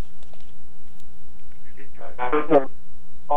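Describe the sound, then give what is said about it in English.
A phone line buzzes with a steady electrical hum while a couple of brief, garbled bursts of broken-up sound crackle through, then the connection falls back to just the drone. “Oops, I think I'm losing you. Are you there?”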